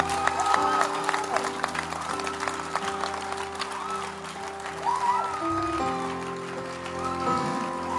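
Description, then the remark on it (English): A large crowd claps steadily and cheers throughout, a dense wash of applause layered over sustained keyboard chords, with loud voices rising from the audience. “Are you clapping or you are pretending to clap?”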